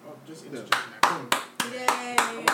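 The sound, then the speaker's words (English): Seven sharp, loud hand claps land in a steady rhythm right into the microphone, each a crisp smack with a short decay, while a voice carries on faintly underneath. “Yeah, niggas is clapping on the mic, fucking it all up.”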